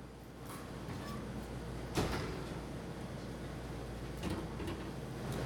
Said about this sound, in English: And if maybe a couple of you guys could prop open a door before we all fall asleep in here, okay?